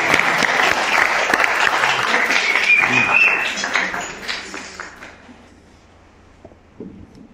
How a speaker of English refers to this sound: If it makes you happy, you can clap. You can clap for yourselves. You can clap for all of Am Yisrael. We're doing a great job. We're doing a really great job.